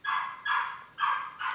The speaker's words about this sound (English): Alright, so... let me go investigate this barking dog, and we'll be right back after these few messages.